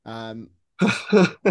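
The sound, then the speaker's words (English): A throaty voiced rasp gives way to three harsh, rough bursts of coughing and spluttering in quick succession, loud, with no clear words. “just … coughing”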